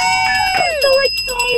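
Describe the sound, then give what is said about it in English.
A bell, the same one rung on the show since 1983, rings with bright, sustained metallic tones that shimmer and waver for a second or two, with a lively voice-like murmur running underneath. “You know, Scary's still ringing the same bell they rang back in 1983 here on this very show.”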